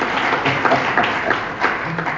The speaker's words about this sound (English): I mean, we're getting ready to have our first granddaughter here in about a month and a half. And y'all can clap for that.